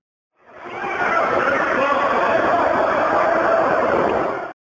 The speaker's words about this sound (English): So let's just right now play, let's say, 3 seconds of the screaming of the damned.